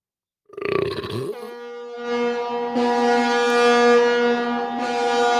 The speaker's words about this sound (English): I hate when the trains go by. Or is that a tugboat in the river? It's a horn for a cruise ship.